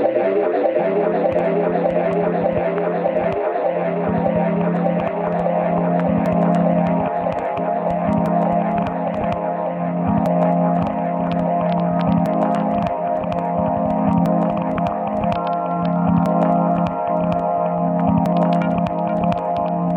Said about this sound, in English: Electronic micro sounds that you're hearing are from a record by the boss of New York label 12K.